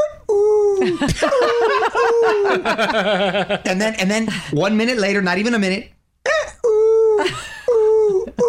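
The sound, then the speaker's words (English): A person loudly imitates the call of an unidentified bird heard around 5:30 in the morning, voicing a run of rapid, warbling, repeated whoops that rise and fall in pitch, with short bits of speech before and after. “But I've had to switch recently because there's this bird. I don't know what kind of bird it is.”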